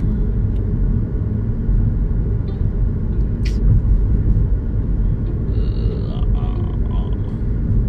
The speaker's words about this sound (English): That car was right in the back of me. Jeez, you need to pay attention, bro.